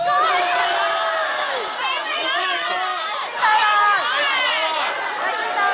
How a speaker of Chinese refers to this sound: 导演郭帆呢日率领主演吴京、刘德华、沙溢、王志同一班幕后人员现身广州，举行电影宣传活动，现场观众尖叫连连，华仔仲好兴奋，用广东话同大家拜年添噃。